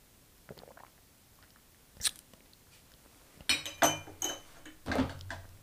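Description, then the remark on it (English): A sharp glass clink, then a burst of sipping and swallowing as a shot of liquor goes down in a few quick gulps, with a faint exhale at the end. No one speaks. “Y'all are probably laid out on the couch just like I'm about to be in 20 seconds after I swallow this shot.”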